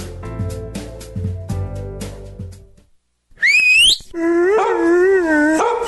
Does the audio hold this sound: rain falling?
no